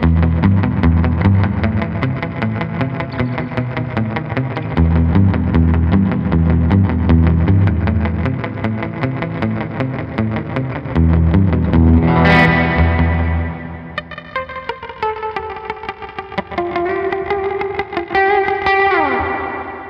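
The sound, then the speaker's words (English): Electric guitar through a sparkle-blue spring reverb pedal, tone and depth maxed, decay about 70%: loud, dense strummed chords first, then a bright splashy sweep and single ringing notes whose drippy, washy tails linger and fade. No one speaks. “So if you're looking for kind of an ambient, spacey, moody kind of long trail reverb, I think this is a really good option.”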